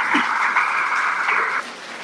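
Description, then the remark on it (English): Audience applause, a steady dense wash of many hands clapping at once, holding loud and even before thinning out sharply near the end. “Can we give Arthur a final round of applause?”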